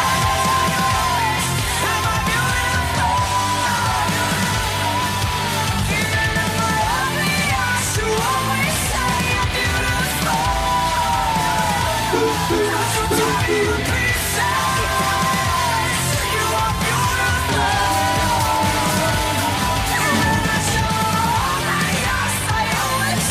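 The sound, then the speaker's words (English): A loud, dense rock song plays steadily, with driving drums, distorted guitars and yelled, heavily echoing vocals washing over the mix the whole way through. “It's got way too much echoing in it that...”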